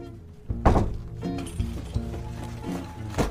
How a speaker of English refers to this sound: As I push open this grotty, graffitied door to my apartment building, I pause. This is the sound. A door opening. I push it again.